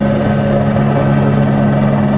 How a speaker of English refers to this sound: After heavier than usual snow fell across the Bavarian region, a helicopter was brought in to clear snow from the tops of the trees along a highway near Munich.